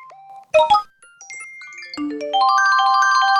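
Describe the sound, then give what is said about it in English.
Phone notification alerts pile up one after another: a couple of sharp double pings, scattered electronic chimes, then a rising cascade of stacked tones ringing out loudly together with no talking. “So you're probably freaking out as my phone is making all these noise and wondering if it's your phone that's making all these noise and thinking to yourself, oh my God, it's a text message, it's a DM, it's a God knows what.”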